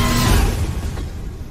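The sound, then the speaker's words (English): A train rushes past, a loud rumbling whoosh that peaks early and then slowly eases off over a second or so, with no voices. “Trains go fast.”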